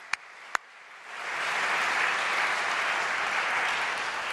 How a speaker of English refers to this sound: Can we have a round of applause for Eric and everything he does here at Socrates in the City?